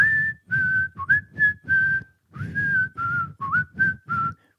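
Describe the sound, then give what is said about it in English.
A person whistles a short, bouncy tune while hiking: clear notes in a steady rhythmic phrase, with brief gaps between notes and slight pitch slides, over a faint low background rumble. “he's whistling …”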